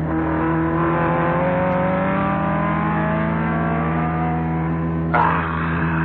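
racing car engine revving

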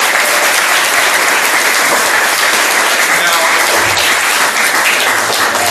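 audience round of applause

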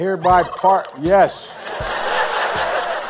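turkeys gobbling

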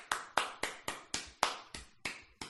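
soft golf clap

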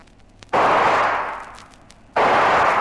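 gunshots

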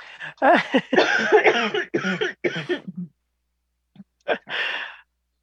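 coughing

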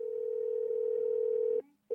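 telephone call tone

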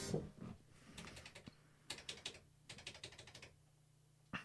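typing on a typewriter

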